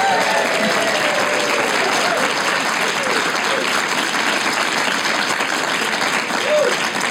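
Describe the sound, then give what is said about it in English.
A live audience at a show recording applauds steadily for several seconds, dense clapping mixed with scattered cheers and whoops, the noise staying loud and even throughout. “An enthusiastic crowd that knows what time it is in America.”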